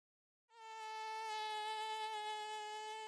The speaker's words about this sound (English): God. Blasted mosquito. Got under the knitting.